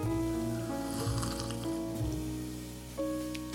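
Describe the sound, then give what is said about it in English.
A wet, airy slurp of someone sipping tea, with a few short hissing bursts, over a steady layer of sustained tones that shift pitch every second or so. “So I'll try to sip it. We gotta make it sound dainty.”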